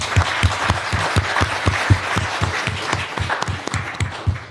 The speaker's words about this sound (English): We've got a few minutes for questions, but I'd just like to give a round of applause to our panelists.